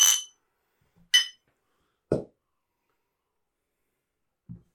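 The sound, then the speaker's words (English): Beer glasses clink together twice in a toast over a Black IPA, bright and ringing, about a second apart, followed by a duller thud and a faint soft knock. No one speaks. “But this beer is fantastic, so cheers to Taxman and the Pink Boots Society Black IPA.”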